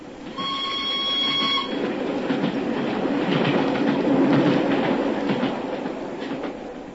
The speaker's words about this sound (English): As we hid behind a pile of luggage at Canterbury, we saw the single carriage of the special go thundering past us.